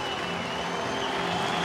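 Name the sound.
stadium crowd applause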